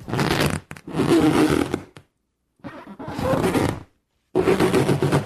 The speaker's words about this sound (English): Is that just the sound of a balloon? It's disturbing. I really hate this. Is it going to keep going?